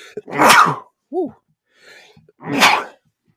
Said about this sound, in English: Bless you, guy. Bless you.